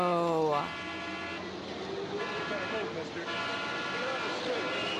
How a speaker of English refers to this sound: Now the cars are even louder